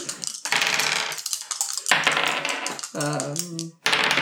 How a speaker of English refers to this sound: So roll 2 six-sided dice and add your brains score.